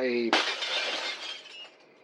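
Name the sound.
window glass shattering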